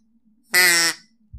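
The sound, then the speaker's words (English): A single loud, buzzy duck call quack, reedy and rich in harmonics, lasting under half a second over a faint low hum, with no talking. “Well, duck call to Chet for bringing that knowledge into our worlds.”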